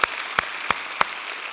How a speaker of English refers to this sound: Let's give all those people out there a big hand. God bless y'all. God bless you.